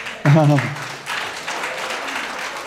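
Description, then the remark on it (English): A church audience applauds after a prayer in a steady, moderately loud wash of clapping, with a single voice calling out briefly over it at the start. “You can continue clapping.”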